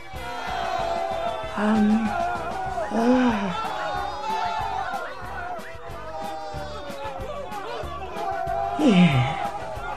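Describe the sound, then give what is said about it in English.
A loud crowd cheers and whoops steadily at the start of an annual festival, with excited shouts and rising, falling yells cutting through the dense babble of many voices. “Oh, they're cheering for me.”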